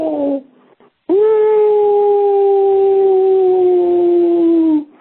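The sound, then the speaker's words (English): A caller's voice message imitates a spooky ghost whistle: a short opening sound, a brief pause, then one long, loud, steady 'ooo' held for nearly four seconds, its pitch sinking slightly before it stops. “I love that people call in and do the ghost whistle, and that it's become a thing.”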